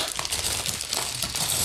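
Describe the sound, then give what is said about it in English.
Continuous crinkling and rustling of a bag being emptied out, with scattered small clattering items, steady, no voices. “Got a bag dump to do.”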